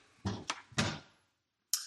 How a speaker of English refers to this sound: All right, so I'm going to open up some other drawers.